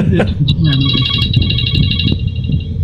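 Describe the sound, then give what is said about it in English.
A phone rings with a loud, steady, high-pitched electronic trill that continues for a couple of seconds while people talk underneath. “Looks like somebody's trying to reach you again.”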